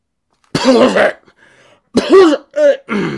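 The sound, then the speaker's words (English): A person clears their throat and coughs several times, loud rough bursts with a brief pause after the first, then three quick ones in succession. “I gotta get that cough button.”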